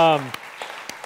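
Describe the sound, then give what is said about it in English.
A voice trails off, then a church audience starts applauding for a departing member with a few scattered, sharp claps at an uneven rhythm, fairly soft, as the clapping begins to build. “Let's clap for her because I'm grateful.”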